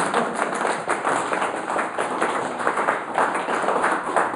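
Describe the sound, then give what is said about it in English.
An audience applauds at the end of a speaker's talk, many hands clapping in a dense, steady patter that stays loud and even throughout, with no voices rising above it. “Let's all applaud on it.”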